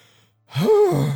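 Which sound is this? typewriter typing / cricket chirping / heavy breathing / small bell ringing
heavy breathing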